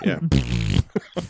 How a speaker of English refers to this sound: Yes, fart noise.